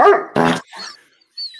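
A dog bark sound effect played from a soundboard: two loud barks in quick succession, followed by a softer whine and a faint high-pitched squeak.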